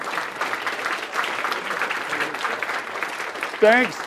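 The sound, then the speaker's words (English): An audience at a seminar series claps steadily and densely for about four seconds for a guest speaker's father, a broad wash of many hands, with a short wavering cheer or whistle rising above it near the end. “So wait, let's give his dad a round of applause.”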